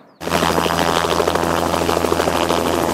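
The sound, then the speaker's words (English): A loud helicopter bucketing water onto a wildfire in steep terrain above Highway 3 near Hope-Princeton cuts in abruptly and holds a steady roar, with a low engine hum and a faint rhythmic chop from the rotors throughout, no voices. “Helicopters bucketing the fire in steep terrain above Highway 3.”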